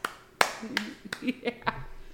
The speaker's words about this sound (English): you want to clap for that? Clap. Yeah.